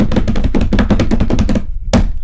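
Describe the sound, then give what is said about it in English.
A quick drum roll tapped by hand on a hard surface, a fast run of close, loud taps for over a second, then a short pause and one final hit. “Drum roll, please.”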